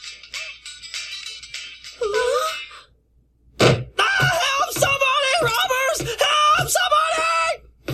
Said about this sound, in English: That guy's just an idiot. Takes more than just an idiot to be screaming that way.